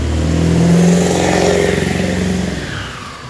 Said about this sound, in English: Hold on one second, you guys. There's going to be a loud truck going by.